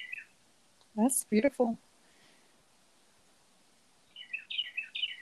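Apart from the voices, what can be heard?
birds chirping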